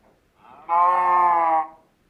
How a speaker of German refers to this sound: Das klingt sehr nach einer Kuh. Ich weiß, ich spiele es nochmal ab. Es ist witzig. Und es ist auch cool.